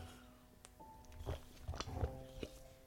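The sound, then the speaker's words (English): A person takes a big gulp: gulping and swallowing sounds, a few wet, clicky mouth noises over about three seconds, quiet and intimate with a faint steady hum behind them and no talking. “Essentially, we're going to have to actually let's take a big gulp first.”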